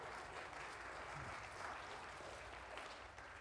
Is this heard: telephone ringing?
no